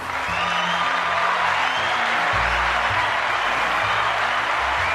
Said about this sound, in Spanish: So, vamos a darle un aplauso a